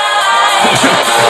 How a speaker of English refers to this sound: You're applauding for a podcast trailer.